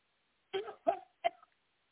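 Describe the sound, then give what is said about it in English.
Three short, harsh coughs in quick succession, moderately loud, each a brief forceful burst with a small gap between, with no talking around them. Deep coughs from the gut, taken with a deep breath during a prayer for deliverance. “Deep breath and cough from your gut.”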